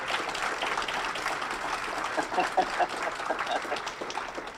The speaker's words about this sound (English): Okay, let's hear a rousing applause there for that devotional.